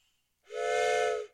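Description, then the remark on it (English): A single loud, sustained whistle blast lasting under a second, bright and breathy with a steady pitch, blown to mark five minutes of a speaker's time limit, with no one talking. “So at 5 minutes, I blow this very nice whistle.”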